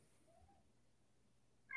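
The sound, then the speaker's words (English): A cat named Ozzy lets out a single short meow right at the end, abrupt, after a stretch of near silence with only a faint, thin tone earlier on. “The cat agrees.”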